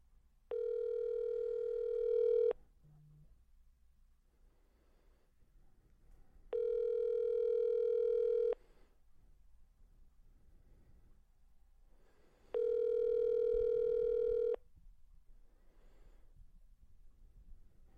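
Three long electronic ringback tones on an outgoing phone call, each about two seconds with roughly four seconds of quiet between, a steady buzzing pitch heard alone without any talk.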